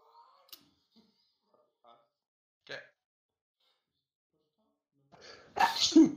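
A quick, muffled sneeze partway through, then a louder, fuller sneeze with a breathy intake just before it near the end.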